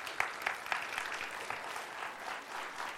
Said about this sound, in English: And so I'm going to invite up the panel now. And if they want to work their way up, you guys give them a round of applause as they start working their way up here.